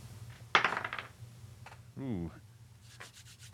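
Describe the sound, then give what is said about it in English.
A quick clatter of dice tumbling across a tabletop, a burst of rattling under a second long, rolled for an attack in a game and showing a 7, followed by a brief voiced murmur and quiet room noise. “7 on the dice, brings it to an 8.”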